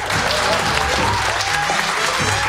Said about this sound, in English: Now, if they haven't earned your applause, I don't know what will.